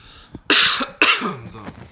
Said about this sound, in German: Einmal husten hier.